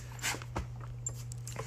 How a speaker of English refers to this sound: sorry, my dog's trying to crawl in my lap. This is why I don't sit on the porch. Go away.